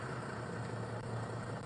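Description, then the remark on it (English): A bus engine idles with a steady, low droning rumble and a faint hiss above it, holding an even level throughout with no voices. “We're on the bus.”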